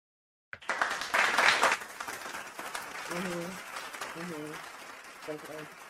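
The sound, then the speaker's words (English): A recorded crowd-applause sound effect, played as a studio-audience soundtrack after a countdown, starts abruptly, peaks loudly in the first second, then settles into steady clapping with a few short voiced shouts or whoops rising over it. “Should I play the clapping?”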